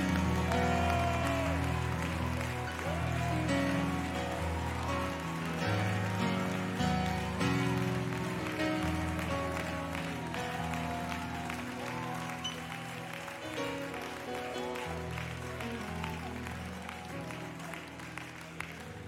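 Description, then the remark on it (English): A large crowd claps hands continuously and loudly for nearly twenty seconds, a dense sustained applause with sustained low instrumental tones playing underneath. “But somebody, for a moment, as the Bible said, clap your hands, all ye people, and shout unto God with the voice of triumph.”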